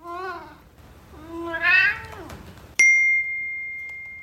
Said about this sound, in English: And sure enough, my phone dings and says, a sound has been recognized that may be a cat.